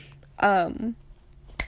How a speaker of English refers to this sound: And you can probably hear my earrings smacking against my plug smacking against my phone.